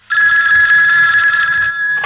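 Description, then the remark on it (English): A telephone bell rings continuously in one long, steady burst lasting about two seconds, loud, with a bright sustained tone and rattling texture before cutting off. “Don't forget the phone!”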